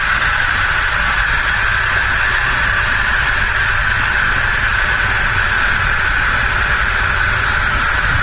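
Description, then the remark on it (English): A loud, steady jet of steam hisses continuously from the release valve of an Instant Pot pressure cooker, whose cover diffuses the steam; a broad rushing noise that holds constant for the whole stretch with no voices over it. “Sometimes on the other one, the liquid would kind of spew out in the steam a little bit, and it also shot up higher.”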